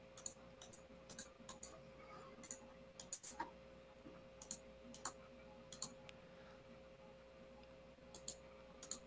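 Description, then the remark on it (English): Irregular bursts of quick computer keyboard clicks, like someone typing, pattering on and off throughout over a low steady electrical hum, with no voices. “sound like you're typing a paragraph over there.”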